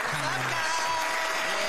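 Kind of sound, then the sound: crowd, applause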